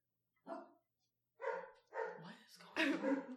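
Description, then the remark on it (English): Several dogs bark in short, loud bursts, one single yap followed by a run of overlapping barks that grow busier and louder toward the end. “I have a lot of dogs, but they don't usually bark this much, so maybe something's dead in my living room.”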